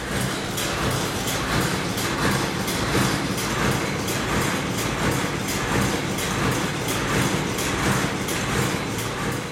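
A train rolls steadily along the rails, a loud, continuous rumble punctuated by a regular clickety-clack of wheels over track joints, with no voices.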